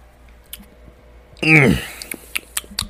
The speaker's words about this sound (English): I'm going to get a quick sip of my beverage, another small beverage break before we get going.